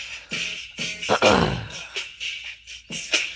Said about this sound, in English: Sorry, I'm clearing my throat so much. Sheesh.